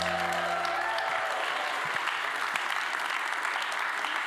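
An audience at a Christmas celebration claps for the readers in a sustained, dense round of applause, steady and fairly loud throughout, with a low tonal hum fading out in the first second or so.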